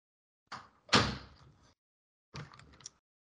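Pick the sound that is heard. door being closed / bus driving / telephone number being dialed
door being closed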